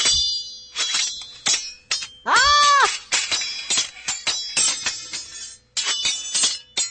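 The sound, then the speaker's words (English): Silverware clatters and clangs in a busy, irregular series of bright metallic hits, with one ringing, wavering tone partway through. There is no talking. “All right, someone's dropping silverware.”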